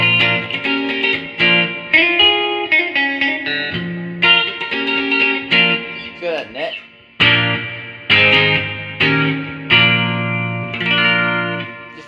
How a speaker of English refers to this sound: Chimey, ringy, like Rickenbacker-esque tones. I mean, that sounds great. That sounds like a freaking Rickenbacker.